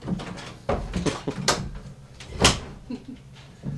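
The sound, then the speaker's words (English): Several sharp knocking clunks and rattles of a door handle being jiggled against a locked latch come in uneven bursts, with a faint low hum beneath. “Star says she said the door's locked.”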